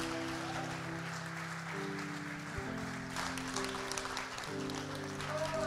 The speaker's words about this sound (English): I'm done preaching. Give the Lord a clap.